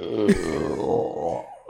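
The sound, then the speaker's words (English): A long, deep burp rumbles out, loud and drawn out for well over a second before cutting off abruptly, with no talking around it. “That burp contest, too. I'm telling you, I could win some shit.”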